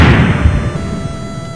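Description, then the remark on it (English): A single loud video game explosion effect from a Pokémon blowing up in a Pokémon game: a booming, crunchy blast with heavy low rumble that slowly fades out over a second or so, with no voices. “Why do all your Pokemon blow up?”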